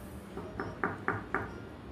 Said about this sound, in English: But one morning, deep in thought, sitting cross-legged in your reorganized chamber, you hear a knock at the door.